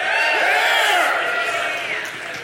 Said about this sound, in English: Is that a good thing or a bad thing that was the loudest cheer out of all of ours?